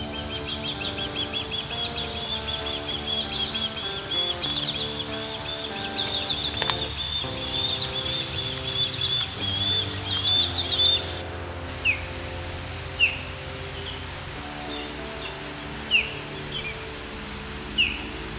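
Osprey calls along the Grand River at Rim Park in Waterloo, Ontario: a steady run of high, thin whistled chirps, then a few separate sharp, downslurred whistles spaced a second or more apart. No one speaks.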